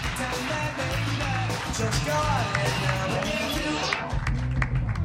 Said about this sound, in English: Put your hands together